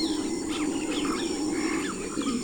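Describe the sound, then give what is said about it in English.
A steady roaring drone from a troop of howler monkeys in the nearby rainforest fills the background, while several birds chirp and whistle over it. “As we round a bend, a troop of howler monkeys sound off from the nearby rainforest, accompanied by quite an array of bird songs.”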